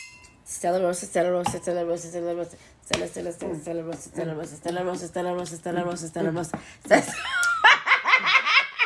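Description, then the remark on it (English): Wine glasses of Stella Rosa Black wine clink together several times in a toast near the end, bright, right after a stretch of people talking and laughing in a lively, upbeat manner. “So y'all, we're drinking some Stella Rosa Black. Stella! Cheers, ho.”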